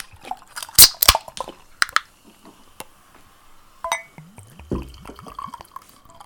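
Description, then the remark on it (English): A few sharp clinks and knocks, then red wine glugs into a glass, its gurgling pitch rising as the glass fills, with no talking. “Well, guys, whenever you're ready, just quickly pour yourself a drink or spark up.”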